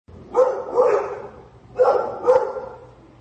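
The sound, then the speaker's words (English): A dog barks four times in two quick pairs, loud, with a short pause between each pair and no one talking. “Well, man's best friend there, but a man apparently not being the best friend to dogs.”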